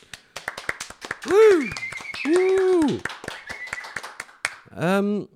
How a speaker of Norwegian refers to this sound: Stor applaus til deg!